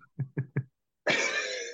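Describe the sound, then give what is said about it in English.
A voice imitates a croupy, seal-like barking cough, the sign of croup: three quick, evenly spaced barks, then a pause and a longer, harsh rasping burst. “Like, you get like a seal barky cough, and that's kind of the sign.”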